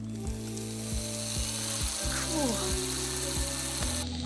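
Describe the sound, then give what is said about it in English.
A power drill runs in reverse with a steady, low mechanical hum, broken by regular clicking beats about twice a second. No one speaks. “he rolls back odometers using a power drill”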